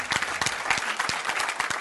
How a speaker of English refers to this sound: I'll wait while you clap your hands.